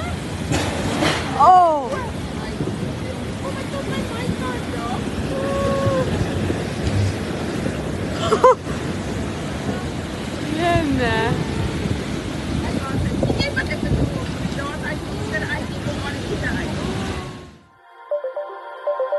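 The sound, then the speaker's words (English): Heavy storm waves crash against the coast of South Africa's Garden Route in a loud, continuous roar with surging bursts, while people exclaim over the din. “Waves have battered South Africa's coastal towns.”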